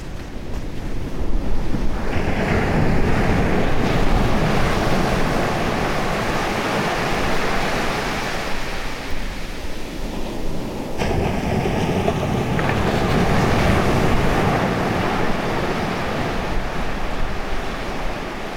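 Waves break and wash ashore at the remote beach of Sandwood Bay, on the far northwestern tip of Scotland, in a steady, continuous roar of surf, with gusts of wind buffeting the microphone throughout. No voices, just broad rushing noise that swells and eases.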